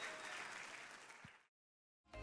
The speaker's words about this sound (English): Oh, give a hand clap unto the Lord today.